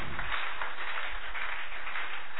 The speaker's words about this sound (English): Clap your two hands together for them.